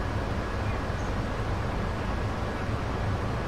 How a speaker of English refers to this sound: See how pilots can actually fly with this ear, with this airplane, with this wind noise in their ears. I mean, sheesh.